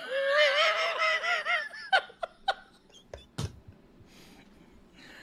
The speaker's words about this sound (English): Crows in Texas be like, yeehaw.